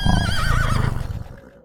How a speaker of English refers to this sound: Instantly, Smokey's eyes glowed scarlet, and he made an odd noise that sounded as if it were a mix between a whinny and a growl, to Jack's surprise.